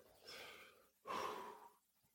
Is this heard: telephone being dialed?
no